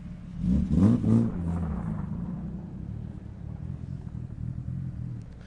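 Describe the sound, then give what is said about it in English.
The engine of an all-wheel-drive Talon on snow tires (Blizzaks) revs up hard on ice in a loud burst near the start, then settles into a steady, throaty low rumble that continues to the end, with no voices. “You got a Talon here with snow tires on it?”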